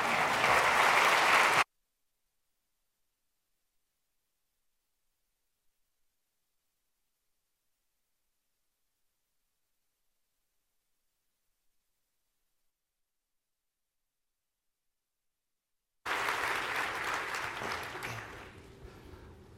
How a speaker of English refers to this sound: So will you help me give a great and grand applause for Charles Baby as he takes the stage?